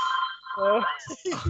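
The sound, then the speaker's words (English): A steady electronic telephone ring drones on, held under a voice that talks over it, with more speech breaking in toward the end. “Still ringing. It's gonna keep ringing.”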